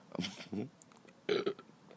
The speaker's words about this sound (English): Don't burp. So disrespectful. Don't burp.